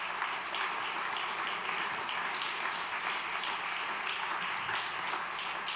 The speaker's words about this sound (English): Come on, if you believe it, clap your hands unto God.